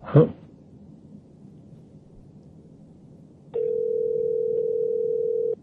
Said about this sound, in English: Here it comes. Not gonna answer, because scam calls are all... Yep. I feel like ring three, we're not gonna get picked up.